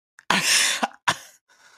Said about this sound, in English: Yeah, cough twice.